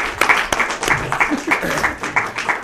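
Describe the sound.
An audience applauds together for a participant getting up to take part in a civil dialogue, a dense patter of many hands clapping steadily at a moderate level, with murmured voices mixed into the crowd noise throughout.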